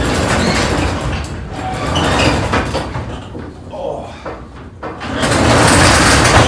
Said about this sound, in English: I'm open the fucking garage door like a man.